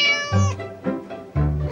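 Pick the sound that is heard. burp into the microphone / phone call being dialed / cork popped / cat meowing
cat meowing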